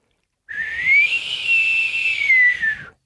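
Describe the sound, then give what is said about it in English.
A single breathy human whistle holds one wavering note for about two and a half seconds, with a strong airy hiss that makes it sound windy. It is fairly loud, with no talking. “It was really windy. That sounded like a windstorm.”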